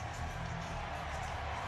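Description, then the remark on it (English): A large arena crowd at an ice hockey game against Boston cheers in a steady, unbroken roar that holds at an even level for the whole short stretch, with no distinct voices standing out, as Morgan Riley goes after a Boston player following a late hit on Timothy Liljegren. “And the crowd absolutely loves the fact that Morgan Riley jumped in.”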